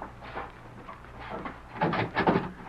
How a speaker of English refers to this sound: I'll open the door now.